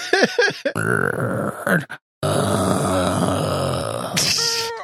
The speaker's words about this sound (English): Tovin reaches in and he opens up this door. It creaks open and you hear the moaning.